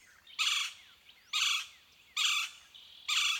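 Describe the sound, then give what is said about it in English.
Four harsh, buzzy whirring calls from a golden-fronted woodpecker, a Mexican species ranging into Texas, evenly spaced about a second apart, loud, with faint thin bird chirps between them, at dawn in forest at the river's edge at Salineño, a small village below Falcon Dam. “Ah, the vibrant whirr calls of a golden-fronted woodpecker, a Mexican species that ranges into Texas.”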